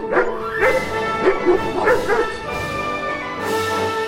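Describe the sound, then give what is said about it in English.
Several angry farm dogs bark aggressively in quick, overlapping bursts, loud, with occasional yips mixed in over a steady background hum. “He was a tall, mean fellow who released his angry dogs to scare away anyone who trespassed on his farm.”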